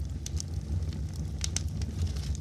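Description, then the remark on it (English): A fireplace crackles steadily with scattered sharp pops over a low, rumbling roar of flames, moderately quiet, with no voices present. “Let's get to tonight's story, Glinda of Oz, set to sleep-inducing music and this beautiful fireplace.”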